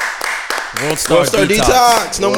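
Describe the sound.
A short burst of people clapping, a dense patter of claps at the start, soon overtaken by loud voices talking or whooping over the tail of the applause.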